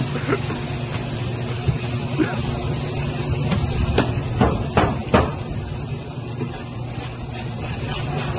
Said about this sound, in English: Who the fuck stabs a windshield like this? And what windshield's this weak, by the way? It's a fucking tiny screw.